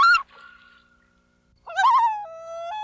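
A common loon calls: a brief sharp note, then a long, faint, fading tone, followed by a louder, wavering wail that swells and holds steady with a step up in pitch. No talking.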